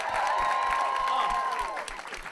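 A crowd applauds and cheers steadily for about two seconds, a dense wash of clapping with a sustained whistle-like tone riding over it before the noise begins to thin out.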